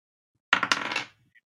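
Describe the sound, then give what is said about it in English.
Dice are rolled to reveal a giveaway winner, clattering across a hard surface in a quick burst of rattling clicks lasting about half a second, then settling, with one faint final tick after a brief pause. “Okay, is it time to reveal the winner of the shrimp dice? It is. Among other accoutrement. I'm gonna roll.”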